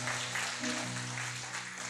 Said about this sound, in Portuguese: Dá um glória a Deus aí, por favor. Amém. Aplauda o Senhor, vamos.